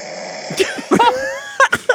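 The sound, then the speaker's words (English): A person imitates loud snoring with a series of harsh, throaty snorts and rasping breaths, several bursts in quick succession, forceful, with no talking alongside. “I try to like put my head in a way that I can't snore.”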